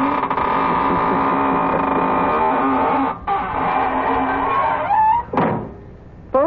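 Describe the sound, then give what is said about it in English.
A door creaks slowly shut with a long, wavering squeal that rises and falls in pitch, ending with a sharp thud as it closes, all against a steady low hum. “Well, now it's time to close the squeaking door.”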